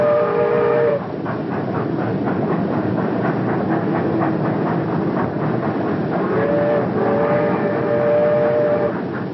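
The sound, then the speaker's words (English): A train hauling bananas rolls along a banana railway through tropical country with a steady rumble and rhythmic clickety-clack, its whistle sounding at the start and again for a few seconds near the end. No one speaks. “The ship, one of the great white fleet, meets the train.”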